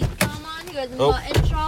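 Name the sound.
car door opening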